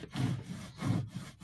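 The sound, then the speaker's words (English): Rhythmic back-and-forth sawing on wood, several rough scraping strokes in steady succession, moderately loud, with no voices. “Are you sawing off your leg?”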